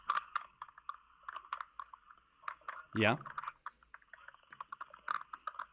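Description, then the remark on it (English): Rapid, uneven clicking of keys on a computer keyboard continues throughout, fairly quiet, with one brief spoken word from a voice near the middle. “Are you typing that? Are you getting all that?”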